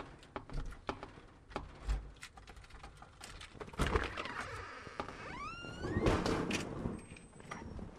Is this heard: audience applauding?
no